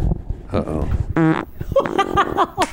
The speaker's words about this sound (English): No sound effects here. That's all real. That's all real. Wow. Did that register? Yeah, we got it. All right. Good job, man. And the Emmy for best fart. Thank you.